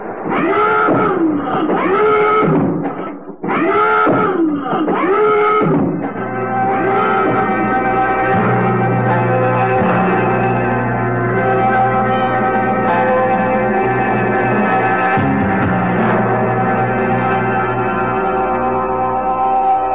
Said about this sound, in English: Attention all crew. Stand by for emergency crash dive. Sound the alarm!